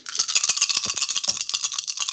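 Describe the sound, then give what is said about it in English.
A dense, continuous rattle of many dice being rolled together in a game, bright and clicky throughout with no voices. “Oh, it sounds like you have a lot of dice there”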